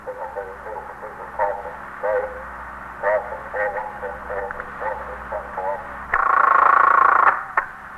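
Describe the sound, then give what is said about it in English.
Crackly, band-limited police radio voice transmission murmuring over a steady low hum at a police station house, then a loud sustained telephone switchboard buzz tone for about a second near the end. “The stillness was broken occasionally by the hum of the switchboard or a call over the monitor of KEA, the police radio.”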